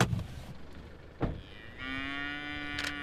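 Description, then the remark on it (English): A cow on a farm lets out a single drawn-out moo, steady, following a quiet stretch of outdoor background noise broken by a brief knock. No one speaks. “I might just take a picture of the cattle if that's okay.”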